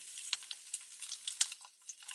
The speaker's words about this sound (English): Okay, so that's how thick mine are. And that's going to be our meat. You can hear that sizzle as soon as I put it in. And then putting it around the edges.